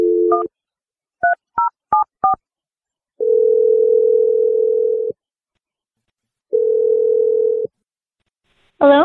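A steady telephone dial tone, then a quick series of short touch-tone beeps as a number is keyed in, followed by two long ringback tones with a pause between, all clear; a call placed on the radio show Brooke and Jeffrey in the Morning.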